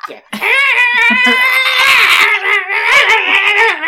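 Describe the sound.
A person imitates raccoon screams with a loud, shrill, wavering cry that lasts several seconds, its pitch warbling up and down and breaking into brief yelps near the end.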